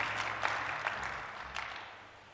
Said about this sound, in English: Come on, somebody clap your hands and praise the name of Jehovah. We thank you.